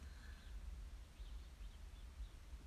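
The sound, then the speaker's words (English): Faint birds chirp in short repeated calls over a steady low outdoor rumble, with no one speaking, while it is very lightly misting after heavy rain. “I love that I can hear the birds.”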